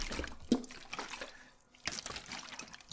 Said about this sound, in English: I've got a giant... You hear that sloshing around? Oh, I should have closed it properly. I just poured it all over myself.